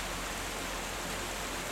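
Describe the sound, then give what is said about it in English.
A river cascading down through a dell at a salmon leap rushes loudly and continuously, a dense, steady roar of churning water with no breaks and no voices. “but that river's making a bit of a racket.”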